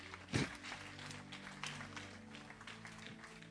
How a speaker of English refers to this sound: Now give him a clap offering.